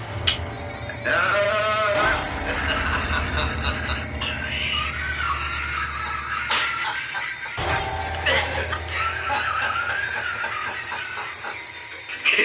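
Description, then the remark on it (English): A goat bleats loudly and repeatedly in wavering, quavering cries, set against a steady rumbling, hissing background noise that runs throughout. “You weenie goat.”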